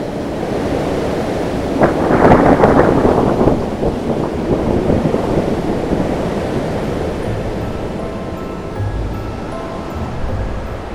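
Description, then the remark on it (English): A roaring storm of gusting wind and rushing rain, surging loudest early on and then churning steadily, with low rumbles toward the end and no voices. “Slowly, they began to drift backwards towards the swirling storm below.”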